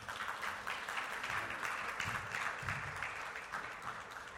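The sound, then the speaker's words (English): A church audience applauds steadily to send off ministry leaders after a prayer, a dense, continuous wash of many hands clapping at an even loudness for several seconds, with no voices standing out. “All right, clap them out.”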